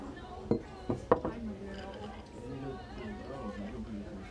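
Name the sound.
glasses clinking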